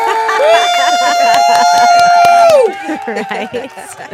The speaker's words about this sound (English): Bravo. Bravo. Let's get a clap there.